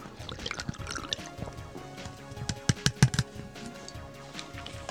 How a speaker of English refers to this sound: And let me take another sip of this motherfucker. Let me finish it off, this Tres Animales real quick.